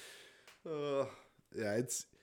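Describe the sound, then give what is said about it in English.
A person yawns aloud: two drawn-out voiced sighs with a falling pitch, each followed by a breathy exhale, with no words spoken. “I'm yawning like a fiend. I'm sorry if this is coming in through the mics.”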